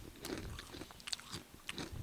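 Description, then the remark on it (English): Crunching as someone bites and chews crisp dill pickle potato chips, a run of several sharp, brittle crackles over about two seconds with no talking. “They really do have some good crunchy pickles. I'm not pickles, chips.”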